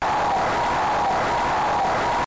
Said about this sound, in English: Was that Punch Out? Yeah, it was just sort of the generic NES cheer. Mm. Oh, yeah. It reminded me of beating Piston Honda in Mike Tyson's Punch Out.